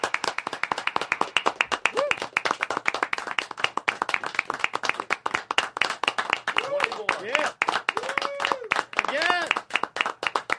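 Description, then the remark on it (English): Sustained audience applause with many hands clapping in a dense, steady patter for about ten seconds, joined by a few rising and falling whoops and cheers from the crowd. “Goes on here. We don't just, there's not, oh, we clap.”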